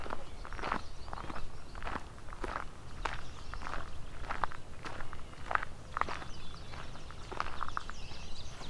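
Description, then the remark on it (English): Steady footsteps crunch and splash along at a walking pace, about two steps per second, crossing Bronte Creek at a very narrow spot, over a constant low rush of flowing water, with a few faint bird chirps in the background. “Just crossing over Bronte Creek at a spot where it's very narrow.”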